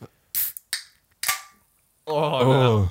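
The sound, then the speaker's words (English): A drink can just taken from the freezer is cracked open: several sharp metallic clicks and pops with a twang, each trailing off into a short fizzing hiss, followed by a person beginning to speak. “That was twangy. That one was ready. That had a good twang to it.”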